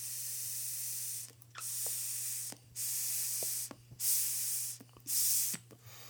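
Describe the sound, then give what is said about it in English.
A vape pen containing Kim Dog is switched on and puffed: about five airy, hissing draws, each lasting around a second with brief pauses between, over a faint steady low hum. “I have one right here with some Kim Dog in it.”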